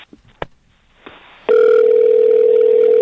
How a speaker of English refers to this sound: And it's ringing. Okay, it's ringing. It's like I'm calling a girl right now.